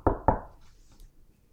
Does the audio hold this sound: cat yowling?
no